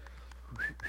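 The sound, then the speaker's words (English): A woman whistles a couple of short, rising notes in quick succession on her way into an office, fairly faint against a quiet background hum, with no talking. “I know when she's here because I hear her whistling on her way in.”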